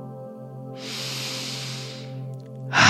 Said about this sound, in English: That's it. Keep the breathing going. I'm giving you a minute starting now.